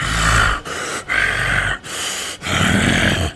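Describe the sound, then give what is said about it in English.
A voice imitates heavy breathing: about five loud, rough breaths in quick succession, with deep grunting rasps, no words spoken. “Your muscles are, like, pushing against your shirt, your armor, and your pants, and you just are breathing.”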